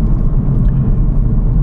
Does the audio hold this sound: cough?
no